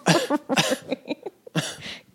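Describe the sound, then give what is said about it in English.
Three harsh coughs burst out in quick succession, with a brief pause before the last, and a few faint throaty vocal sounds in between. “Could you stop coughing on it?”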